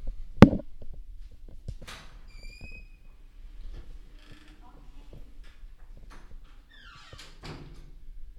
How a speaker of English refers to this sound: Not to mention, I just got someone knock on the door. Just we'll wait 1 second. Someone is knocking on the door. I'll see who this is.